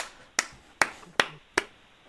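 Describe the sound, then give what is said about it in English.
Four sharp hand claps in a steady, even rhythm, each a crisp bright smack that quickly fades, with no voices between them. “Can you clap while you're doing it? Clap.”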